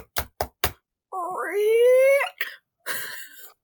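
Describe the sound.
Three quick, evenly spaced footsteps thud. Then a long, rising, voice-like creak follows as a door swings open, ending with a few short scraping bumps.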